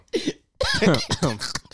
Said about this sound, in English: This is not a regular cough.